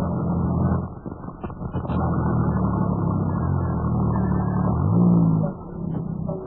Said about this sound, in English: Well, he's stopping his car. He's stopping his car, fellas.